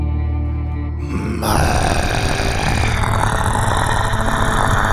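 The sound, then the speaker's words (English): A voice imitates an alligator with a deep, loud, rumbling growl that starts as a low, droning bellow and swells into a rough, gravelly rasp lasting several seconds, with no words spoken. “That's about the best alligator I can do.”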